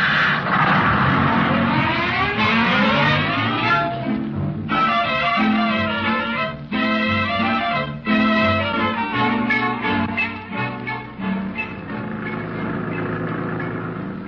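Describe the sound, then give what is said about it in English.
A city bus engine drives along, its pitch climbing as it accelerates, then dropping and rising again through several gear changes, loud throughout with no voices. “Driver, stop that bus.”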